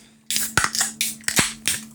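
Sharp cracks of drink cans, including a Copperberg Rosé cider, being opened: several pops over two seconds, each followed by a bright fizzing hiss, with no voices.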